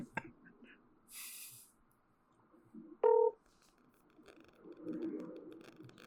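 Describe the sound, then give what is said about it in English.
A single loud, short telephone keypad tone beeps through a phone speaker midway, surrounded by quiet rustling and faint background murmur, with a brief hiss earlier on, as someone calls their mother with the phone volume turned up. “Let me see if I can get my mom on the phone. I don't know if I can, but let's see. I'll turn up the phone.”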